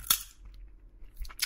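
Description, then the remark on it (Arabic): Sunflower seed shells being cracked between teeth to get the kernels out: a sharp, bright snap at the start, a quiet pause, then a quick cluster of crisp cracks and small crunches at the end, with no talking. “ممكن يكون في نوع من التأمل بتكرار الأفعال الصغيرة في فصفصة البزر، شق القشرة بالأسنان واستغراج اللب منها، وبعدين مد الإيد على الصحن الجديد وعينك لسه في عين اللي بتدردش معه.”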